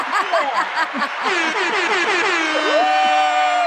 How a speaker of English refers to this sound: We need like an applause or DJ air horn or something. That's like the win.